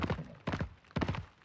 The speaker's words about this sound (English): Sparks flew as the metal-shod hooves of the heavy horses pounded over the paving stones of Hartunstadter. Six horses, broad of chest and already foaming around the bit, plunged down the street that led to the palisaded gate.